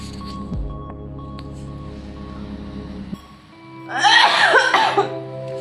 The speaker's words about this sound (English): I cannot walk from my bed going to the toilet without coughing. The toilet is just there.